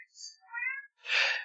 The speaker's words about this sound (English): You need to get that cat out of your office. Someone needs to quit letting that cat in.